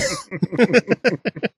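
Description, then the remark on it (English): A rapid string of about ten harsh, open-mouthed coughing bursts, fairly loud, likely a voice mimicking coughing on people in a quick rhythmic run. “Just open mouth coughing on people.”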